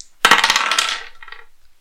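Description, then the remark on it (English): Dice clatter and tumble across a hard tabletop in a quick burst of rattling clicks, fairly loud, then settle with a few lighter taps. The roll decides an outcome, high for yes and low for no. No one speaks. “I'm tempted to leave that one to a dice roll.”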